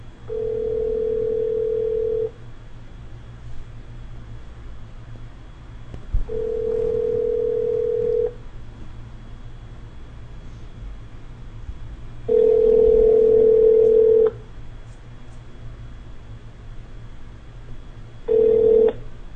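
A phone ringback tone sounds four times, each a steady two-second burst separated by longer pauses, clear and fairly loud over a low background hum, with the last tone cut short.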